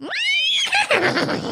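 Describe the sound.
A person imitates a horse whinny: a rising, warbling high-pitched squeal that holds and then breaks into a rough, fluttering snort, loud, about a second and a half long.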